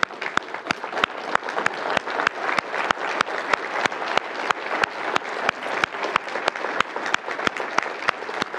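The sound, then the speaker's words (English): Steady applause from a large crowd for veterans and currently serving members of the military asked to stand on Veterans Day, filling the whole stretch, a dense, even patter of many hands clapping without pause, with a few sharper claps standing out now and then. “And I do want to pause and let all of those who either are currently serving or are veterans, if you would stand, we would like to give you a round of applause.”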